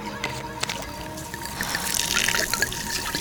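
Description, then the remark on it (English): Gasoline pours steadily from a bottle in a continuous trickling stream, the gurgle building slightly louder toward the end, with no voices. “Empty the bottle. Pour in the gas.”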